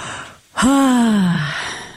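a yawn

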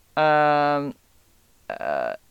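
phone call ringing

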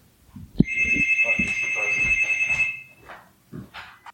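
buzzer going off

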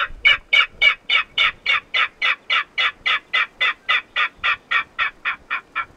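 king rail call

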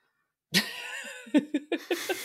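cat

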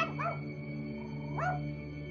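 dog barking

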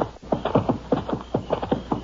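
horse hooves clip-clopping

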